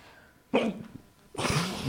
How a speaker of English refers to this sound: And hiccups.